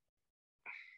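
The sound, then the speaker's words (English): A single sharp sneeze bursts out after a moment of near silence, sudden, with a breathy hiss trailing off at the end. “Bless you.”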